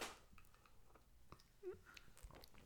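Someone sips home-made coffee in a home office: a few soft, wet slurping and mouth clicks, then a brief gulp-like swallow, all quiet and with no talking.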